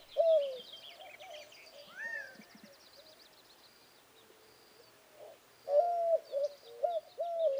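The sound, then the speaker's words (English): White-winged doves call in low, hooting coos, one near the start and a louder run toward the end, while small birds chitter faintly and high in the background. “I looked up into the trees and the utility pole tops where I usually see the hawks, listened for their distinctive calls, but heard only the drone of bees, the chittering of small birds, and the calls of the white-winged doves.”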